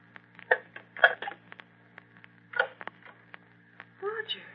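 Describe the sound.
A telephone receiver is set down with a series of clattering knocks and clicks, followed by a few sharp taps. A brief voice murmurs at the very end.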